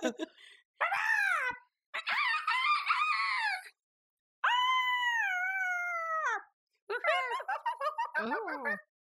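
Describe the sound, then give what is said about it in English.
A person's voice imitates a bird, letting out a series of loud, strained squawks and crowing-like calls in several bursts, ending in rapid warbling cries. “Yeah, squawk it out.”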